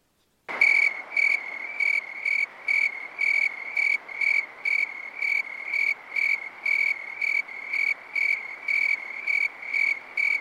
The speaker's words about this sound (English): Let's listen to the tree crickets, which you said were pretty common mm-hmm. now and in this area.